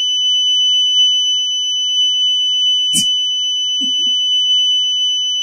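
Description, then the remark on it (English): A house alarm sounds a steady, piercing high-pitched tone throughout, unbroken, with a brief thud midway and a faint muffled noise shortly after. “My house alarm is going off.”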